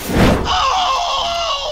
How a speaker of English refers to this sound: But these wooden matches were highly volatile. They not only gave off unpleasant fumes, but would ignite in an explosion of sparks, often setting the user's clothes on fire.